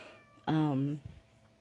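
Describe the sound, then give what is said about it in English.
A cat wanting to come in at a door lets out one loud, drawn-out meow lasting about half a second and sliding slightly downward, followed by a soft brief knock. “oh, here comes the kitty. He had his lunch and now he wants to come have his nap on my feet.”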